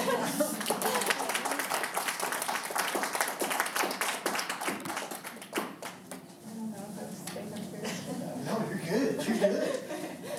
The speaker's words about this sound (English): Applause and everything. Yeah. I don't get that. That's pretty awesome.